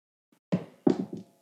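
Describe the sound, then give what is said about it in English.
Dice clatter onto a hard surface in a short series of knocking bursts, a couple of sharp hits followed by quicker rattling bounces that fade out. No one speaks. “Let me just roll some dice.”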